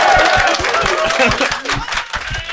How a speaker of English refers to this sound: Yeah, so that's how you get an applause break out of an Australian TF crowd.